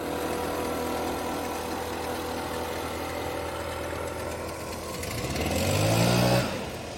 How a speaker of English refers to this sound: All right, now, if you're on one of our audio-only platforms, I guess you just got treated to an annoying noise of leaf blowers for about 4 seconds.